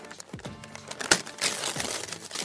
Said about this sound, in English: But nevertheless, I smiled and carefully peeled off the pale green tissue paper.